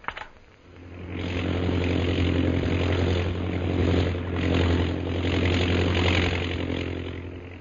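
A chartered propeller plane's engine, leaving Shanghai bound for Mandalay, drones steadily and loudly after a brief start, its low hum and throbbing rumble holding constant with slight swells, no voices present.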